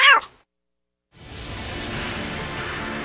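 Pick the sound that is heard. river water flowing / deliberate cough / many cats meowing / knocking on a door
many cats meowing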